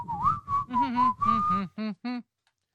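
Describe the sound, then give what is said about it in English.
A person whistles a short, wavering melody, with a low voiced hum running beneath it, ending in two brief clipped notes before falling silent. “….”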